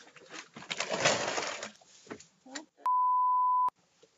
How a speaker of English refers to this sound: What is that fucking beeping outside?